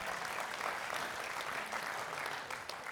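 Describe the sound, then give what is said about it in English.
Steady audience applause fills the whole stretch, a dense, even wash of many hands clapping at a constant loud level, with no voices standing out. “Yeah, come on, you can amen that, you can applaud that.”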